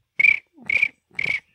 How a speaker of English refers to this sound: Crickets.